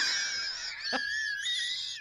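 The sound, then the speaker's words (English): A single short, harsh cough bursts out midway through a steady high, whistling wheeze that runs the whole time, with no talking. “You know, I have a cough.”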